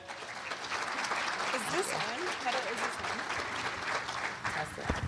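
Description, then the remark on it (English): An audience at the NAIOP January breakfast, the Developers Round Table, applauds steadily for about five seconds, a dense wash of many hands clapping at an even loudness, with a few murmuring voices faintly mixed in underneath. “You're going to hear applause, and then you will hear the full program from the NAIOP January breakfast, the Developers Round Table.”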